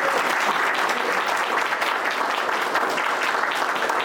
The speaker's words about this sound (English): Ladies and gentlemen, please just do another round of applause for Andrew Grabowski, Dr. Alex Choi, J.D. Four, Cindy Carrasco, Ryan Mears, Tiffany Vivo, and Judge Amber. Big round of applause.